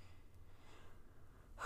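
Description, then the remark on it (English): Heavy, breathy exhalations from a person trying to breathe through while speaking, ending in a sharp, louder gasping breath, with no talking. “And if you guys wonder if I'm laughing, I'm not. I'm trying to like breathe through this.”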